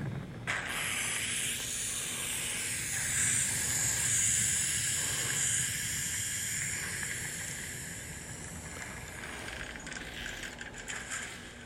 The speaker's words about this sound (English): This is actually pretty impressive. Like, you can hear everything shaking. The whole train is moving.